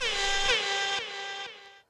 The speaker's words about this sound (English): Yeah, let's give him an air. Let's give him a big old air horn.